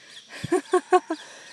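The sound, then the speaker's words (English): A bird gives four quick, evenly spaced, clear calls against a quiet background with faint noise and no talking. “Yes, so the birds love the prayer, don't they?”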